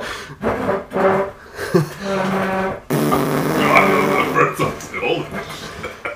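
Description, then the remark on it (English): A chair being moved scrapes across the floor, letting out a drawn-out, buzzy squeak that sounds much like a fart, in a few loud bursts with voices chattering around it. “Somebody just farted, right? No, I did move this chair. Oh, this is the chair.”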